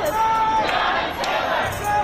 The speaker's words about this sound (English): Through this year, crowds have been chanting her name.